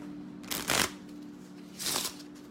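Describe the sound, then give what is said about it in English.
A deck of playing cards is shuffled before a one-card reading, in two quick riffling bursts separated by a short pause, fairly soft, over a faint steady hum with no talking. “I forgot to shuffle. My apologies.”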